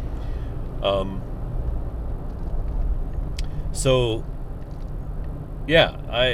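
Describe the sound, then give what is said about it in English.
Steady low rumble of a car's interior while driving on the road behind another car, continuous throughout, with a few brief bursts of voice breaking in over the drone. “I'm following a car right now.”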